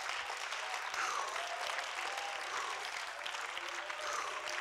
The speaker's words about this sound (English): Woo, clap your hands and thank God.